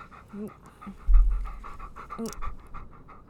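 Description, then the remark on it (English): A dog, Recky, stands above the microphone, panting rapidly and sniffing right against it, with quick breathy bursts, a heavy low thump of breath around the middle, and soft snuffling throughout. “He's like standing above the microphone right now. He wants to be part of it. Oh, oh. Sniffing the mic.”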